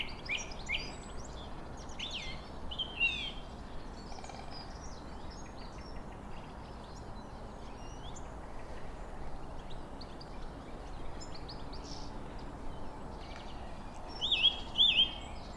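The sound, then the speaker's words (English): A woodpecker calls from a big oak tree about 15 feet overhead among other birds chirping outdoors. Sharp high notes are scattered through a steady woodland background, with a louder burst of calls near the end. No voices. “There's the other woodpecker. He's in a big oak.”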